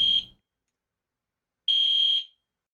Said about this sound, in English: There's like some kind of alarm going off in my room